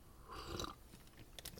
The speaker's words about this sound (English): A good friend of mine passed along 3 tea bags of Hardy and Sons Hot Cinnamon Sunset Tea. And I've already had a cup of this, but I'm having another cup here this morning, podcast professional that I am. I will give it a sip here.